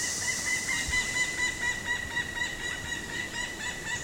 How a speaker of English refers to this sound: And a pileated woodpecker is greeting us, that call from up there. And pileated woodpeckers rely on these downed logs for their food. They love carpenter ants and other things on downed wood.